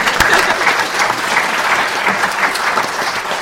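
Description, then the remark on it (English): An audience claps steadily for the Mars rover Spirit after its furthest move since April, a dense wash of many hands sustained at an even, fairly loud level for a few seconds, with no voices standing out. “I want the audience to give Spirit a round of applause. Let's have a round of applause.”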